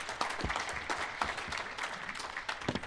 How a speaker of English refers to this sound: Round of applause.